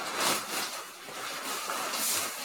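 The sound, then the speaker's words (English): Steady, hissy rustling of a cheap polyester Pickle Rick Halloween costume, with a zipper being undone amid the crinkling. The scratchy noise swells briefly near the start and again near the end, with no one speaking. “I'm hearing is unzipping, the rustling of cheap polyester.”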